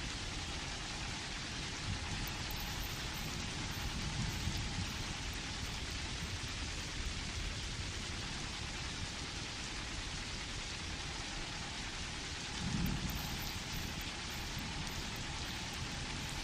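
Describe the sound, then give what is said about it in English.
Steady, dense rainfall from a severe storm hisses without a break, fairly loud, with a couple of brief low rumbles, like thunder, rising faintly beneath it. No one speaks. “It's a fucking severe storm warning.”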